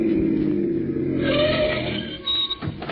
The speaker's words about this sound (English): Listen, here comes another car. Flag them, will you? You don't have to flag them. They're stopping.